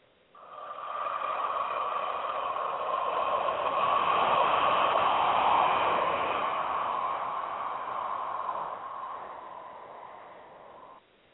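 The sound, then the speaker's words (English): A long, steady exhale of ujjayi breathing, a soft hissing rush like waves that swells in the middle and tapers off over about ten seconds, with no talking. “Let me just demonstrate quickly an inhale and exhale, and you'll see why it's called ocean breath.”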